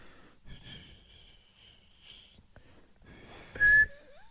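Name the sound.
attempt at whistling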